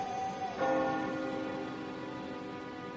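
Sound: town clock chiming midnight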